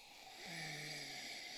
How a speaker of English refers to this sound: You ready to wrap your lips around number six? That's right, yeah. Let's give it a sniff. I haven't sniffed it yet. All right, sniff the crap out of it.